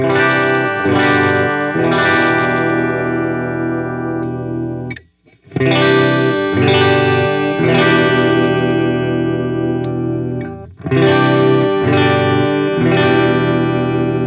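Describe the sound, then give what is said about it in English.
Clean electric guitar on the bridge pickup, run through a Geneva amp sim directly into an audio interface, rings out in loud, sustained chords, played in three phrases separated by two brief pauses, with no talking. “So let's hit some clean tone. I'm running the Geneva amp sim directly into my interface, and here's the bridge pickup.”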